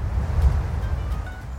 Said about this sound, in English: Since it's getting a little windy out here, and wind's not a friend of any audio recording, I'm going to head back to the studio